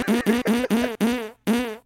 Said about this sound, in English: So when you hear this noise, it's a pile of farts.